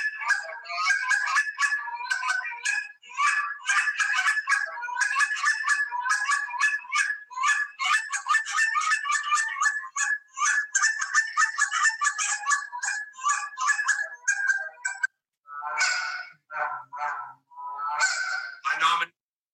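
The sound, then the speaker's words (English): Fast, loud goose-call honking in a near-continuous stream of sharp clucks and honks for about fifteen seconds, then a short pause before a few final drawn-out honks. “World Champ Goose Caller”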